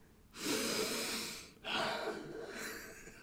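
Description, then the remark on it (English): A voice imitates a man's loud sniffing at Lady Gaga: two long, forceful breathy inhalations through the nose, the first lasting over a second, the second following after a brief pause. “You know that sniff that he, like, there's a sniff and you just could go, you know, you're just having a wee, I wonder what that smell is.”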